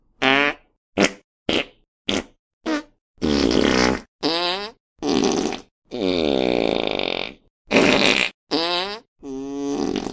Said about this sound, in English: Oh, he keeps doing that, farting. Oh, oh, oh, it stinks.